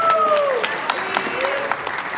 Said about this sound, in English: Please give him your round of applause.